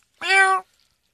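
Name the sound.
cat meowing loudly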